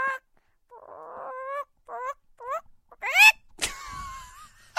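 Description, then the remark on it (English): A person imitates a chicken with a run of squawky clucks and rising bawks, high and nasal, in short bursts that build to a loud, shrill final squawk. “I could do a chicken, that's it.”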